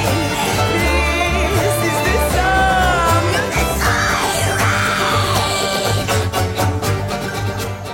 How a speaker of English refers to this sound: Black metal screech. I really like the guttural thing. It's a nice addition, and it almost adds to the pirateness of it,